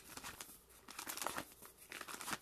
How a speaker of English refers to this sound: And you will hear my pages turning.